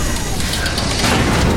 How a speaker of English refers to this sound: It's crushing the tram. It's moving forward.